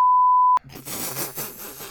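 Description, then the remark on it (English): A loud, steady censor bleep tone covering a spoken profanity holds for about half a second, then cuts off abruptly into a dense burst of noisy, voice-like sound. “gonna have to beep that too.”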